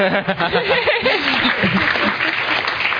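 A crowd claps for a speaker after a talk in a dense, continuous wash of applause, with whoops and chuckling voices mixed in during the first second or so before the clapping carries on alone.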